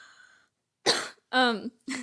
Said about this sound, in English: Was that a cough or a laugh? I don't know, I started like choking on my breath.